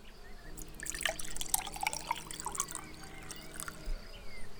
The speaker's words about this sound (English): Please make yourselves comfortable. I'll just stir the sangria.